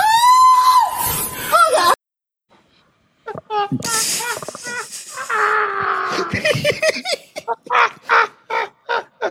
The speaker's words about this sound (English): Dog, that nigga was screaming like Lacey Duvall.